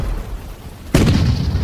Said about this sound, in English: 40 days with the booming of the guns, the nerve-wracking whine of the projectiles, and the crash of the bombs ever in my ears.